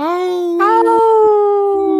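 A single long, loud howl that holds steady, lifts slightly in pitch partway through, then sustains and trails off over about two seconds, heard alone.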